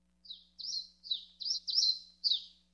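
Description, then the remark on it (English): A bird chirps in a quick series of about six bright, high notes, closely spaced and fairly clear, with no talking and only a faint low hum underneath. “One thing we all have to remember, as the weather gets colder, so do the birds.”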